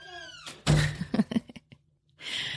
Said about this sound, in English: Okay, shut the door, please. Thank you.